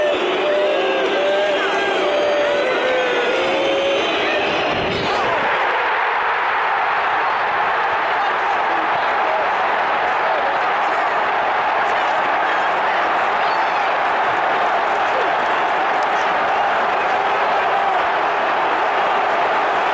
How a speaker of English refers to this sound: And this is Kevin Phillips' extra time penalty. And there's quite a few of these videos chosen out there available. This is a video from the Watford end of Kevin Phillips scoring and the roar from the Palace fans as a result.